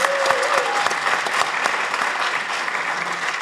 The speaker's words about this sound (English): Give Campbell Harvey a round of applause.